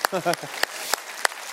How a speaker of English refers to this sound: let's clap again. It's Easter. Come on.